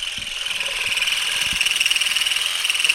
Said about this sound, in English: It was weird and super fun. You just kind of combed the vibrating rake through the branches and the olives started whizzing off in all directions.